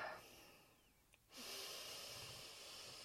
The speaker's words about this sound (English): But if you can, take a moment and take a couple breaths with me.